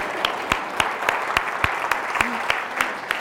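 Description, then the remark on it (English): An audience applauds the drummer in a steady wash of clapping, with sharper individual claps popping out at a regular, quick rhythm. Moderately loud and continuous, with no speech over it. “So maybe, how about a round of applause for that drummer tonight, huh?”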